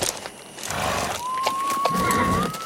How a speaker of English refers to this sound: Hark! I hear horses! Give us a light there!